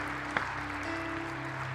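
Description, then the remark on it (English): A church audience applauds to welcome and support a family joining the church, in a steady, even wash of clapping with one sharper clap standing out early. A low, constant hum sits underneath, and no one speaks. “And I know you want to pledge your love, prayers, and support once again to this family by letting it be known by saying amen and applause.”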